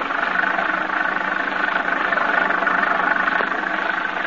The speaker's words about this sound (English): The little car lurches and bounces in its fight to keep the center of the highway.